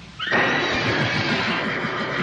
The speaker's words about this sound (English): So the horses would whinny every time her name was said, which was hilarious.